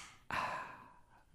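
A single breathy exhale rushes out abruptly and loudly, then slowly trails off like a relieved sigh-gasp, with no talking around it.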